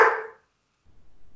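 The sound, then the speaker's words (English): One short, sharp bark from a female dog rings out loud, fading quickly into silence before a faint low rumble of background noise returns. “Hazel agrees with that double. She barked in approval.”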